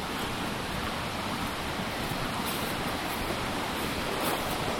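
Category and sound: nature, flowing river water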